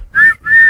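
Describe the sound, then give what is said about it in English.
Two short, shrill whistle blasts in quick succession, each a steady high tone, loud, with a brief gap between them and no talking. “Blow the whistle time.”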